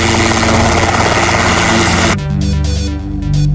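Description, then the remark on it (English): A loud, droning helicopter with a steady low rotor thrum and engine whine, continuous throughout; partway through the high-pitched noise drops away, leaving a deeper pulsing rumble. “It's a helicopter.”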